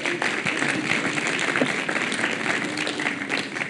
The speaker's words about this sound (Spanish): Eso es. Dale un aplauso, porfa.